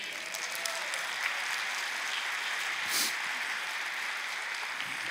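An audience applauds God in a steady, dense wash of clapping that holds at an even level for about five seconds, with a brief swell near the end and no voices standing out.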